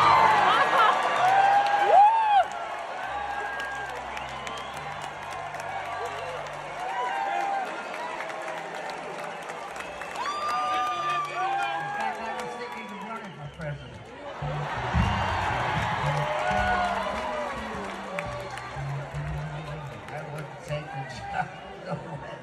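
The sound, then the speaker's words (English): A large crowd cheers and hollers, a dense wash of many voices that surges loudly at the start, settles into steady chatter, then swells again past the midpoint. “At the end there, if you couldn't quite hear it, he said, I was thinking of running for president, and the crowd cheered that.”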